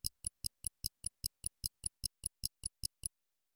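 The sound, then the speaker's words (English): A watch ticks steadily, about sixteen crisp, evenly spaced ticks at a brisk pace that stop abruptly after three seconds. No voices, just the quiet, sharp clicking. “You're right. It's not a clock. It's... a watch.”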